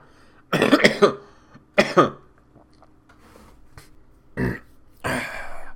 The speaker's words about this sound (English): Damn, we could be burping shit.